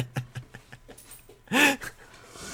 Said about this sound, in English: I'm really sorry. One of the dogs is coughing in the background.